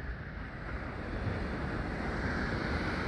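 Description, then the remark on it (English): Ocean waves surge against the shore in a continuous, rumbling roar, rougher than normal that day, with churning surf and some wind noise buffeting the microphone, steady. “The water is aggressive today. It's not normally this aggressive.”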